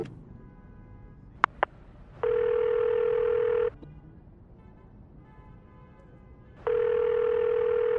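Telephone sounds in Los Angeles: a couple of quick clicks and beeps from dialing a number found in the phone book, then two long, steady electronic phone tones spaced a few seconds apart, clear, with no one speaking.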